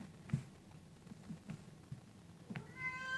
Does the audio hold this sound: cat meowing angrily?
yes